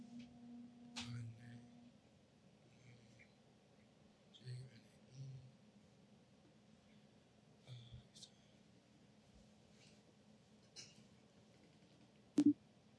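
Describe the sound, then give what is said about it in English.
A faint phone ringing tone purrs in short repeated bursts while nobody picks up, with muffled voices and small clicks in the background. “Wait, call her and then give me the phone so I can plug it in real quick.”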